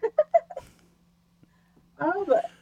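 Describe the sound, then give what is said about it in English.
Someone imitates a bird with their voice: four quick chirped notes, a short pause, then a longer wavering, warbling call, fairly loud. “That was a good bird.”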